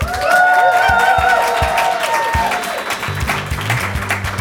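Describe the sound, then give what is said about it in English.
A live audience of dozens in Miami claps and cheers steadily, dense applause filling the whole clip, with a few whoops rising above it and some voices shouting briefly toward the end. “It's a crowd of dozens.”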